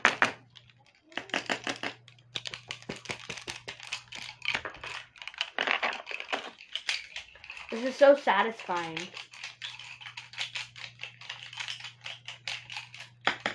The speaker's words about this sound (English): Who's excited to hear me shaking pencils around?